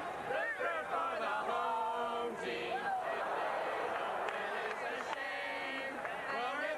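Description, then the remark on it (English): A large crowd at RFK Stadium in Washington sings together in a loud, continuous, ragged chorus, many voices blending into a dense wash with pitches wavering and drifting out of tune. “Oh, this crowd, they're not doing a good job here. It's a little pitchy, dog.”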